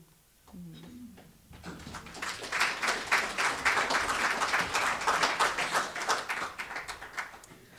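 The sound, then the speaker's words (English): A crowd bursts into applause after a brief voice, the clapping building quickly into a dense, steady patter of many hands that holds strong for several seconds. “You guys are real generous with the applause.”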